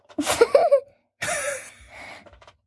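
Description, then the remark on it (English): Heavy, breathy panting on a puppy: two loud, rasping breaths with a short pause between, the second trailing off more softly. No talking. “You're breathing so heavy on puppy.”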